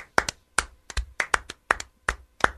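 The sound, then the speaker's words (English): A dozen or so sharp hand claps, mostly in quick pairs, from one or two people giving brief applause for NBA player Nemanja Bjelica, with no voices, moderately loud and crisp. “Speaking of overseas, can we give a round of applause to Nemanja Bjelica, whose NBA career is probably over?”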